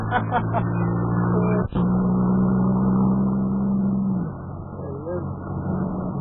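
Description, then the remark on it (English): A car engine hums steadily, then slows and winds down to a stop as the driver stops his car, leaving a quieter rumble behind with faint voices in the background. “He's stopping his car, fellas.”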